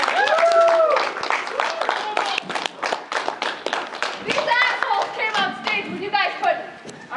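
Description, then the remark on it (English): A convention crowd bursts into applause for a panel. Dense, steady clapping lasts several seconds, with excited whoops and shouting voices mixed in over the hands, fairly loud. “That fucking applause sucked. Give him a hand!”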